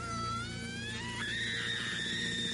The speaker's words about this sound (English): A couple times she just, like, has this sonic scream that just... Yeah.